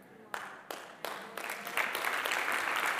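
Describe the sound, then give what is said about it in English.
A few scattered claps from an audience quickly build into steady, moderately loud applause, with no distinct voices standing out. “Like, 25% of you are clapping and 75% of you are like, wait a minute.”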